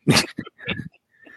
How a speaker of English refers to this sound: I keep coughing like this.